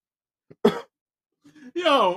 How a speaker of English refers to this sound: Hey, yo, if y'all hear me coughing, yo, I'm hitting this damn weed pen. This shit strong as fuck.